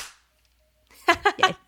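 After a short silence and a count-off, several people clap their hands together at nearly the same moment so the audio can be lined up, the claps landing slightly out of step as a quick cluster of three sharp, loud bursts.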